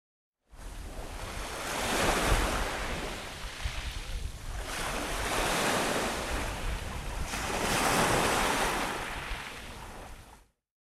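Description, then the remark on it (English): Sea waves wash onto the shore in three slow, rolling surges, each swelling to a loud roar and then hissing away. There is a steady windy rush underneath and no voices. “Jane sits by the sea.”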